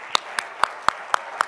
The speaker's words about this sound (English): Somebody shout hallelujah. Oh, clap your hands.